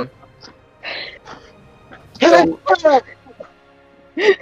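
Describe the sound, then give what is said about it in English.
Sneezing: a few sharp, breathy vocal bursts with gasping build-ups, two loud ones close together in the middle and another near the end, amid quieter voice sounds. “I think with that perception check, I'm pretty sure someone's sneezing.”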